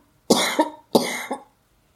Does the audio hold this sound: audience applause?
no